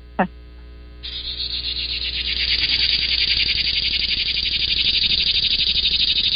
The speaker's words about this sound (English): Hey, by the way, I got a cicada sound. I just looked it up. Here you go.